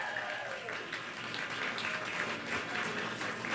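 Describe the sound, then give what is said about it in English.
Steady audience applause at a show also broadcast on radio, as two guests walk up to join it, a dense wash of many hands clapping at an even, sustained level throughout, with a faint murmur of voices mixed underneath. “Keep clapping, everyone.”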